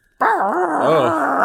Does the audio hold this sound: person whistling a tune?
no